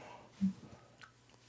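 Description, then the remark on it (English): A brief wet mouth slurp, fairly quiet, made by a person imitating someone slurping body wash in a shower for a TikTok challenge sound effect, with a soft thump at the start and a faint sucking sound after, over a low hiss of background noise. “Just someone slurping. Slurping total body wash in a shower.”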